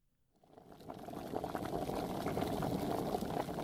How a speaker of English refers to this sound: Steam billowed up from a pot on Grandpa's stove. It carried with it a smell that Sawyer and Suzie would forever associate with fall. The smell of cinnamon and allspice as it bubbled its flavors into the boiling batch of apples.